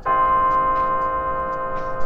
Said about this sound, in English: On the horizon! Sound the bell!